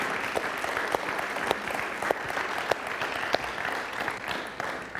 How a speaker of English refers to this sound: So would you give her a big round of applause?